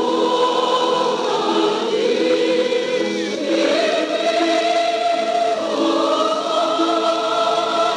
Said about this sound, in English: The Eisteddfod Choir leads the crowd singing Wales's national anthem, another chapter added to the ancient history of Wales.